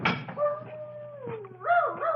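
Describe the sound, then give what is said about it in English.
A dog named Chip howls in a long, wavering tone that slides downward, then breaks into rising and falling whimpering yelps near the end. No voices are present. “Quiet, Chip. What are you yelling about?”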